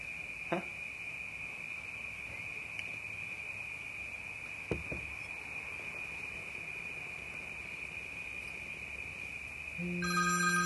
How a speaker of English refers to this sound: That'll be the phone.